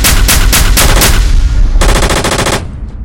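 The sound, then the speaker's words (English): Loud, heavy weapons fire from a wheeled infantry fighting vehicle (IFV): a steady string of slower, booming autocannon shots, then a brief, rapid, rattling machine gun burst, with low rumbling echoes trailing off at the end. “Its autocannon and machine gun roar.”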